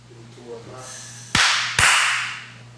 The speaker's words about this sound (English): All right. That was a good one. Thank you. Made me flinch the second one. No, it was good. We're gonna do clapping classes now. It was solid.